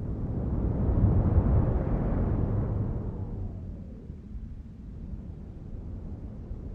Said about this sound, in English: You hear animal sounds gradually disappear. They're taken over by the sounds of what seems to be distant traffic and other human machinery. And then the wind starts to come into the recording more.